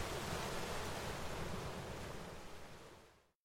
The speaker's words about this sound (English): You're listening to Ocean Waves at an Iceberg.